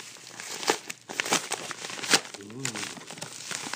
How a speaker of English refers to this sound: Now, usually these things happen on YouTube where you can see them unbox it, but you're going to hear it. And you wait for the satisfaction of the package opening and the book sliding out of it. Here we go.